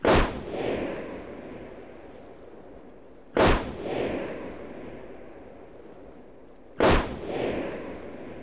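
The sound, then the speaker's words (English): Three loud rifle gunshots ring out about three seconds apart, fired at grazing sheep about 50 feet away, each a sharp crack trailed by a long, rumbling echo that fades before the next shot. No voices are heard. “More bullets flew.”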